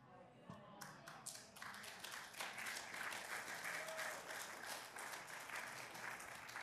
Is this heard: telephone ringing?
no